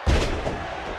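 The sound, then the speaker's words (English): The wrestler Sabu slams onto the mat after a huge vertical suplex from Kevin Nash, making one heavy, booming thud, followed by a steady roar of crowd noise for the rest of the second. “Crashing onto that mat.”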